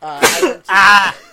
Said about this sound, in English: Well, I sneezed. Bless you. Yep.